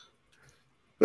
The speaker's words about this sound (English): I could have muted myself. Bless you. Thank you. Silent but deadly. Man, that felt good. My nose is going to start dripping like a motherfucker now.